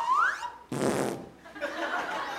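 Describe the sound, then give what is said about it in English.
A prop comic's fart machine blurts out a loud, buzzy raspberry, followed by a longer sputtering fart noise that trails off into a softer rumble, clear with no talking. “What, just the two props? Is that it? The fart machine and the sly whistle?”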